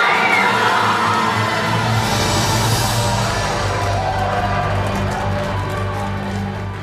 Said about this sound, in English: Okay, what was that noise? That was like a scream and a boo and also a trumpet section somehow.